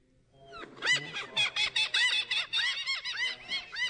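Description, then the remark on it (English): A seagull sound effect: a rapid run of shrill, squealing gull cries, about a dozen harsh high-pitched calls in quick succession, loud and without any talking. “A seagull sound effect.”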